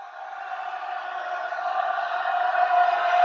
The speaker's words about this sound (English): Well, you can hear the noise that the Rowdies are making as they inbound it.